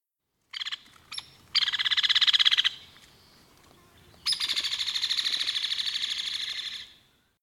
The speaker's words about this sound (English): Hairy rattle or whinny call does not descend in pitch at the end.